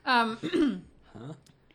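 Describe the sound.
A voice imitates strained, heavy breathing through clenched teeth: a loud, groaning heave followed by a second, quieter hissing breath.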